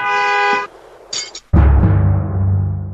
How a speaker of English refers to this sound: Hey, why is that motherfucker honking outside?